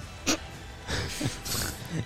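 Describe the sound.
People growl and snarl like animals in a handful of short, rough, breathy bursts, some overlapping, at moderate loudness.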